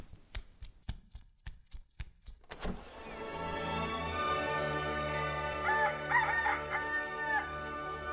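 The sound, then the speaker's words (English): Several sharp, evenly spaced knocks give way to a loud, drawn-out rooster crow in the morning in a small-town neighborhood, rising and warbling for several seconds, with no talking. “Hello, Mr. Bird. You seem cheep, cheep, chipper today.”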